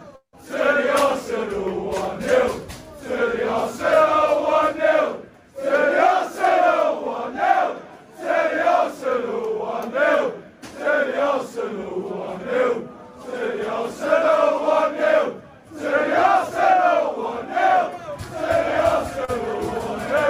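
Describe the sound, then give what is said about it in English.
A large crowd of Arsenal and Wolves football fans leaving the stadium chants '1-0 to the Arsenal' in unison, loud rhythmic phrases repeating with short pauses between them, the massed voices rising and falling steadily for about twenty seconds, recorded on a phone. “When all those Wolves players went back to their dressing room and they were in the shower or the bath or whatever, they were hearing the Arsenal fans and the Wolves fans leaving the stadium. This is what they would have heard.”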